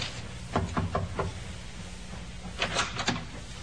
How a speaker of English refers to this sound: Captain Booth thought it might be courteous if Miss Parsons were under the weather to pay her a courtesy call. Captain knocked.